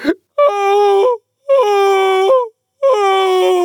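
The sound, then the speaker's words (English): A woman screams shrilly three times in a row, each long, loud, steady cry held for about a second before breaking off, with short silent gaps between them and no talking. “Her screams were so exactly like the whistle of a steam engine that Alice had to hold both her hands over her ears.”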